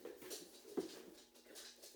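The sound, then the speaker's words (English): A dog whimpers faintly, a soft, thin whine with a brief louder yelp-like squeak near the middle. “Yeah, and now the dog, maybe I should put him up.”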